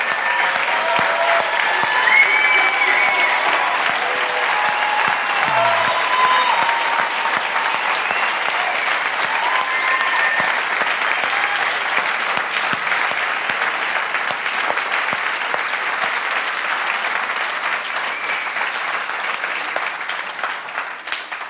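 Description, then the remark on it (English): A large crowd applauds steadily for over twenty seconds to thank armed forces veterans who have stood up, a dense, sustained wash of clapping that holds its loudness throughout and only begins to ease slightly at the end. “I want you to know that we could clap all day.”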